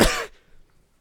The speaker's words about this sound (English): But was that just once because you meant to cough just once, or was that just once because ChatGPT is smarter than me and saw that coming in some kind of 4D chess play?